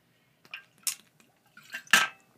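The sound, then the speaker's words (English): Someone takes a drink of water: a few short, quiet slurps and swallows, with a faint clink of the glass, and no one speaking. “I apologize, I took a drink of water there.”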